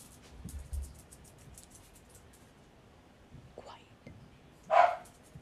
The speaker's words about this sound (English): Sorry, my dogs are barking in the back. Just ignore them.